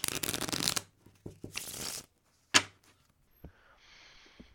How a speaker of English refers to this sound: Ooh, shuffling card sound effects.